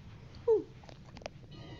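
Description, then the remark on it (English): A male pet dog gives one short, high-pitched whine, sliding down in pitch, followed by a few faint clicks and rustles over a low steady hum. “Let's see if I can get some good audio of my dog.”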